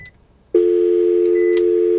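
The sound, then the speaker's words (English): After a brief moment of near silence, a loud, steady telephone line tone switches on and holds without a break to the end, with no voices present, as the phone lines are being checked. “Just going to check the phone lines here.”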